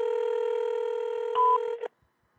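A telephone redials: a steady two-note electronic phone tone holds for nearly two seconds, a brief louder keypad beep cuts in near the end, then it stops abruptly into silence.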